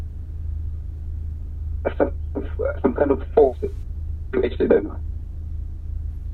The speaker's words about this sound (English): Can you say that again? It's breaking a bit the phone.